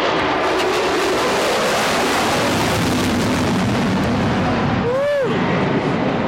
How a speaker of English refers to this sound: He loves the jet noise. Well, I have to laugh because it's loud and it's deafening over the radio, but here comes another one.